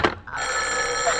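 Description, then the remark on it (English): A telephone bell rings in one sustained, steady burst, fairly loud, its bright metallic tone holding evenly after a brief sharp onset, with no voices. “Oh, what's the matter with his phone?”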